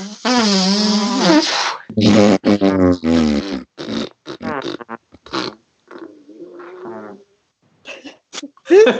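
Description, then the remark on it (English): Several loud, buzzy fart noises sound, with a longer, lower, sputtering blast near the end. Short vocal bursts are mixed in, and the fart sounds may be made by a voice. “These stairs fart.”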